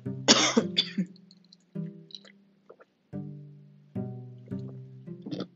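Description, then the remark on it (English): A harsh choking cough bursts out, followed by several strained, wheezy coughs and throat-clearing sputters spaced over a few seconds, after water went down the wrong way. “Excuse me, I think that water went down the wrong way.”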